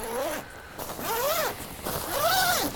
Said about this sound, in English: And you can see the zipper here, and it's a 7/8 long zipper. It doesn't go all the way to the foot area, and I'm glad it doesn't, just because that allows cold in. But you'll see the zipper operate here.